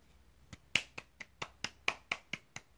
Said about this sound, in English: 2 claps for you, but I feel like it's been 6 years and 170 pages of having to hear about this damn doctorate and dissertation.